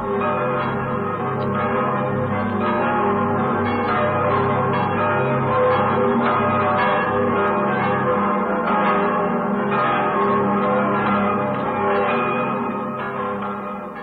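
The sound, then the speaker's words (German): The bells of the Imperial Cathedral in Aachen peal continuously, several bells overlapping in a dense, resonant wash that stays loud and steady throughout, with no voices. “Es läuten die Glocken des Kaiserdoms zu Aachen.”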